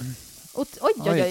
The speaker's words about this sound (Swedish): De färska cocktailtomaterna är i pannan och då låter det lite mer, för då är det ganska mycket vätska i dem som går ner och träffar pannan